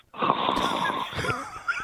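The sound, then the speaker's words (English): A voice imitates the loud, raspy snore of a man asleep in a movie theater: one long rattling inhale lasting about a second, then a few rougher snorting breaths trailing off, alone without speech. “I hear this guy snoring like he's a an elephant,”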